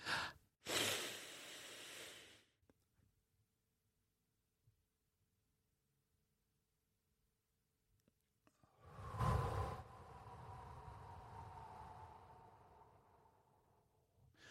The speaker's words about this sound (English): I heard a horrible breathing in sound there because I was too close to my mic. So I'm going to do it again in a second. But I will say, on that 8 seconds when you're exhaling out, it is like beautiful magic.